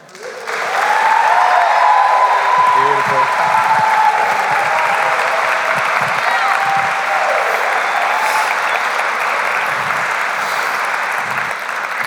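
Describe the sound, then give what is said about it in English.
Sustained applause from a large audience, a dense steady wash of clapping that holds at full strength for the whole stretch, with a few faint cheers or voices rising within it. “Keep those rounds of applause going.”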